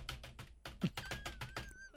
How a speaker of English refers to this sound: I've got an old mate sitting behind me who not only is making these noises, but also he's got the loudest keyboard ever, and you can hear this.